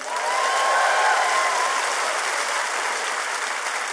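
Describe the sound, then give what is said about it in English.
An audience claps steadily to welcome Oakland storyteller Don Reed, a dense wash of many hands sustained at even loudness for a few seconds, with a faint whistle-like tone briefly riding above it and no one speaking. “Everyone, clap for you, clap for you.”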